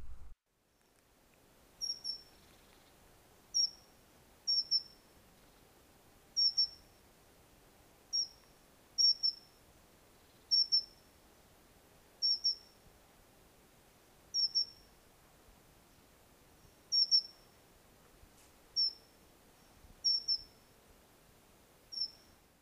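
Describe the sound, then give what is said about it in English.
A dunnock repeats a thin, high-pitched piping call, roughly every second or so, each note short and squeaky like a creaking gate, over a faint steady background hiss. “The main call or alarm call is a somewhat high-pitched, often quiet, sweet, sweet, a little like an opening of a squeaky gate.”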